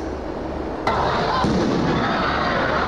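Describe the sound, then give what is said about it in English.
Two sharp bangs ring out about half a second apart as a group of teenagers light off fireworks at Bayside Marketplace, followed by a noisy wash of crowd commotion and shouting as people run, in an open outdoor space. “whole brawl started was after a group of teenagers started lighting off fireworks in Bayside Marketplace.”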